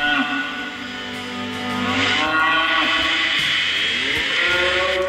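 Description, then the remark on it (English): Cattle low in long, drawn-out moos with rising and falling pitch, loud, layered over a steady, dense background; a sample in a music recording of cattle being led to a slaughterhouse. “For example, if you listen to the title track, you can hear a sample of hoofbeats of cattle as they're led, apparently, to the slaughterhouse.”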